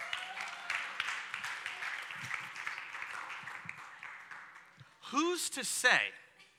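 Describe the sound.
An audience claps steadily for about five seconds, a dense crackling patter that slowly thins out, before a voice breaks in with rising and falling pitch.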